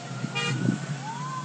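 A single car horn toots briefly from a car behind, honking at a driver stuck in stopped traffic, amid the steady hum of idling traffic, with faint road noise and a low murmur in the background.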